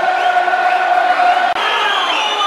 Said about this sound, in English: Whistles from the crowd.